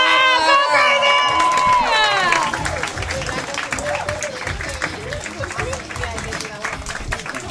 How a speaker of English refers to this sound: Guys, please start clapping right now for the incredible Chanel Ali. Louder!